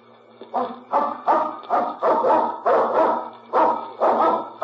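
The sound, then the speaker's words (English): Fred Harlan's dog at his place barks repeatedly and loudly, about eight sharp barks in a steady rhythm, with no one speaking. “That must be the dog you told us about.”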